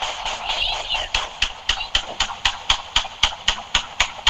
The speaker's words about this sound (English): This audio recording painting a picture of how many rounds were fired, sparking panic. People jumping the curbs, running on the grass, kids running, moms and dads running, and all you hear is a whole bunch of shots.